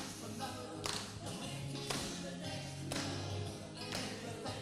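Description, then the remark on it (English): A crowd claps along in unison, sharp bursts landing roughly once per second in a steady beat, over sustained music or singing with a low, droning tone. “Yeah, we can clap along.”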